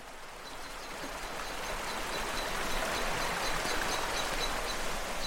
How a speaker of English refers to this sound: The woodland floor is covered in bluebells, and all I can hear is the water rushing by as I make my way up the glen.